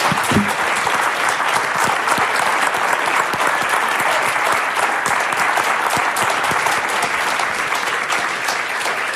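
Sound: audience round of applause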